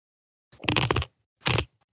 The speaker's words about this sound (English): Someone's chewing ice. That was me. Did it pick that up?